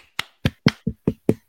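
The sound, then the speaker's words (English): A weak, lackluster round of applause: seven sharp, separate hand claps at a steady, unhurried rhythm, with no voices and silence between each clap. “Lame round of applause, but that's okay.”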